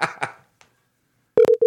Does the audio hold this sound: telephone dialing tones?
yes